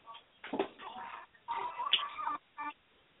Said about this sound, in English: Bird was screaming that he wanted out, and then he just decided he didn't want out.